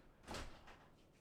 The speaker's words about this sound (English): Is it not latched anymore? No. It is kind of weak, though. The storm just came down and turned the knob. Yeah. Like, anybody home? Hello? Yeah, the door just flung open.